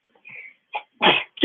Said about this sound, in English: God bless you